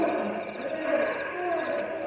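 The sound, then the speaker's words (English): A cougar near a camp lets out a long, drawn-out roaring cry that holds steady at fairly strong volume for a couple of seconds, heard on its own without any talking. “What's that? Cougar. He come close to camp.”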